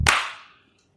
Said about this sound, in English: Three, two, one, clap.